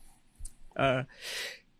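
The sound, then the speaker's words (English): A single sneeze: a brief voiced, tonal 'ah' followed by a loud, hissy burst of breath, over in under two seconds. “Bless you, baby.”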